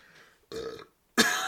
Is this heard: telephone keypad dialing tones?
no